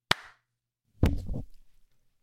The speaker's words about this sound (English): So clap so we know where to look? No. Well, yeah, probably. Let's do that. Okay, we'll do a clap. Right? 3, 2, 1.